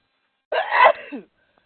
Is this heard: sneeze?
yes